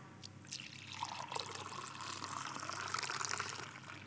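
Liquid is poured steadily into a cup, a continuous splashing stream whose tone rises slightly as the vessel fills, lasting a few seconds with no talking.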